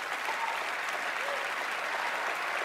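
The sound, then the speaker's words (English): Steady audience applause for a guest, a dense wash of many hands clapping at an even loudness for the whole stretch, with no individual claps standing out and no voices above it. “He's getting clappity claps.”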